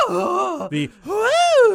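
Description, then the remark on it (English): A loud, exaggerated cartoon-style startled gasp from an animated cartoon character: a voiced sound, a sharp breathy intake, then a rising, drawn-out vocal cry, heard alone without any talking. “I'm sure that they got that one take for posterity and then just used it forever, because you hear that gasp all the time.”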